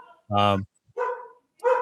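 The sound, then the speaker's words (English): A dog barks three times in quick succession, loud, with short pauses between each bark; the first bark is the longest and fullest. Dogs in a living room, chasing their tails. “Your dog loves Jalen Carter.”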